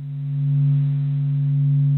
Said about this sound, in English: low-frequency hum isn't necessarily what Icarus would have been listening to in his final moments, but what it is a scientist's translation of the sun's movement waves, loops, and eruptions into sound.